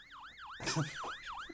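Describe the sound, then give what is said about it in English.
An ambulance siren wails in quick, repeating up-and-down sweeps, about four cycles, clear and steady, with a brief burst of noisy clatter breaking in partway through. “Can we get a tiny ambulance, people? Get a Hot Wheels ambulance in here.”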